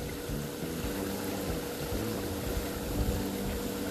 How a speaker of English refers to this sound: You can hear the sound of a stream running down.